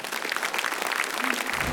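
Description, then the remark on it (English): A crowd applauds steadily to welcome Pastor Mark, a dense patter of many hands clapping at an even, fairly loud level with no voices standing out. “So let's all give a round of applause and welcome Pastor Mark this morning.”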